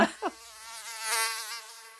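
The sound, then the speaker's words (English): A mosquito's thin, high-pitched whine hovers, rising and falling slightly in pitch as it drones steadily for a couple of seconds after a brief opening blip. “Can we talk about mosquitoes for a second?”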